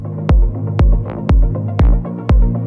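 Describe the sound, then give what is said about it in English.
An old label release played in a DJ mix: an electronic music track with a punchy kick drum thumping steadily about twice a second over a sustained, droning low synth bass, with occasional brief hissy accents; loud, no voices. “And as you can hear, the track playing right now is one of our old releases.”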